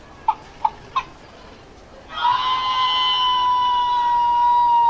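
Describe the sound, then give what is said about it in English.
Chickens cluck three times in quick, evenly spaced bursts, then a louder, continuous squawking chorus rises and holds steady until the end, with no voices present. “Look over there! There's more chickens!”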